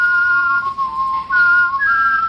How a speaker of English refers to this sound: together again with himself, whistling your favorite Christmas classics. He's not just whistling Dixie.